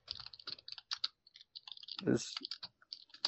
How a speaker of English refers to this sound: Guys, kill the effing typing. You know the rules.